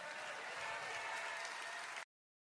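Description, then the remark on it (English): A crowd applauds steadily, many hands clapping in a dense, continuous wash of sound that holds at an even level for about two seconds before cutting off abruptly. “Now, and here, I know they're applauding, and I do feel for him.”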